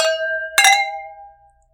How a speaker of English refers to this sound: All right, well, let's cheers so we can try these. Yes, cheers. Cheers.